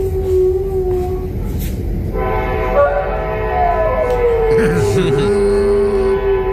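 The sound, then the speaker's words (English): A train rumbles past close by on tracks very near a home, its horn blaring in long, sustained harmonic blasts over a steady low roar, with a wavering, howl-like tone of someone howling at the train sliding through near the end. “Yeah, anytime a train comes by, which we live very near train tracks, he howls at the train, but if somebody comes up to him to comfort him or whatever, he'll stop.”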